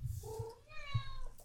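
A cat meows twice, a short lower call followed by a longer, higher-pitched drawn-out meow, over a low background rumble.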